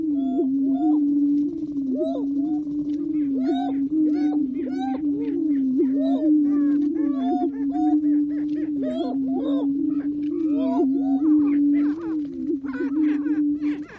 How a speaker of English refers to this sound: Nature recordist Lang Elliott got up at the crack of dawn and set up his equipment at the Prairie Chicken Lek in the Nebraska National Forest to record the males strutting their stuff.